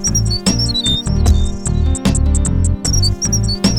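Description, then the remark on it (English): A loud, upbeat theme tune with a heavy, pulsing bass beat, sharp drum hits and squeaky, chirping high-pitched synth notes, playing on its own without any talking. “Start the theme music.”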